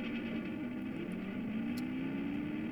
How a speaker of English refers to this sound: Oh, the guitars, they sound like a car.